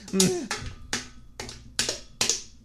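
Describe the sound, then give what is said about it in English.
Six sharp knocks on a door land at a steady, even pace, each one crisp, with a brief murmur of voice near the start. “Oh, it looks like there's somebody at the door.”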